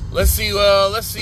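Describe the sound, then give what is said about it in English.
A car horn blares in two loud blasts, the second one held steady for about half a second, as two cars honk at each other in Detroit street traffic, with the murmur of traffic underneath. “Yo, man, these two cars is going at it out here, boy. They show wasn't honking at me.”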